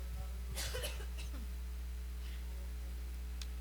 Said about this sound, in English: You're just going to have to bear with me through awkward silences of coughing, okay?